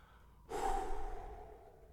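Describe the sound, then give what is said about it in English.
A single long, deep breath, rushing in suddenly and then tapering off slowly without fully fading. No voices are heard. “Breathing in, breathing out, relaxing, coming back to your center, meditating.”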